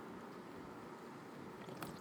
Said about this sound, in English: Like, why am I eating right now and drinking V8 Splash?